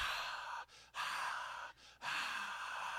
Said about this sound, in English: Did that sound like a large crowd? No. Or did it sound like me breathing into the mic?